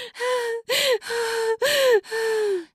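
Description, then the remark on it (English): Five sharp, breathy gasps from a woman follow one another in quick succession with brief pauses between them, as she climaxes during sex and her body jerks. They are voiced, strained and loud, and no other sounds are present. “I fall silent as the orgasm takes me, gasping and sputtering as my body jerks beneath yours.”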